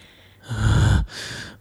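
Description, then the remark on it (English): A voice imitates heavy, muffled breathing through a mask: one loud rasping inhale followed by a quieter, hissing exhale, with no talking. “There's some heavy breathing going on behind me because this guy can't breathe in this mask.”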